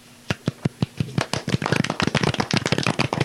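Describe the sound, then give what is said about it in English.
A soft golf clap: a few evenly spaced, crisp hand claps that quickly speed up into a denser, overlapping patter of light clapping, with no talking. “That, although I do have to give you a little bit of a golf clap.”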